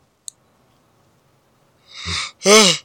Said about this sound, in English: We were both yawning. That's how bored we are with this fucking floor show.